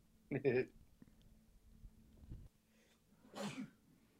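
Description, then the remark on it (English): A sharp, hissy sneeze bursts out near the end, preceded a few seconds earlier by a shorter rough vocal burst, like a cough, over a faint low hum. “Bless you.”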